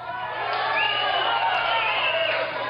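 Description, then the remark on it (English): A large crowd chants "throw them out" and cheers together in a loud, continuous roar of many voices, sustained for a few seconds with a slightly muffled quality. “People are actually chanting throw them out.”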